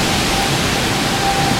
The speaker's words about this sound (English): And then see, here comes the wind again.